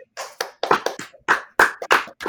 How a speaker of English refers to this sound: Hey, we are now a part of the Broadway Sports Media family. Yes, sir. I'll clap about it.